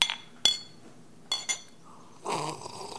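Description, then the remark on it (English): Glasses are tapped together in a toast, a few bright clinks ringing out in quick succession, followed by a soft muffled rustle near the end. “Pick up that glass. To us, the honeymooners.”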